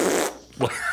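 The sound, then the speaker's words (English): A voice mimics a fart with a loud, buzzy raspberry, then a short pause and a second sputtering blast, with no other talk. “So he's all, dude, these guys do their double kick and it sounds like a fart all.”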